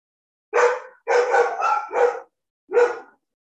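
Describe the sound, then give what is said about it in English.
A badly behaved dog barks loudly, about five sharp woofs in an uneven rhythm: a single bark, a quick run of three, then one more after a pause. No talking. “I have a very bad behaved dog.”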